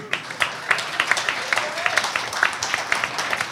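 An audience claps together, a dense, steady patter of many hands with sharper individual claps popping out, holding at a moderate level for a few seconds.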